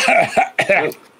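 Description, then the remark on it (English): A person clears their throat, two rough, gravelly bursts in quick succession, loud and alone with no talking. “I have to clear my throat.”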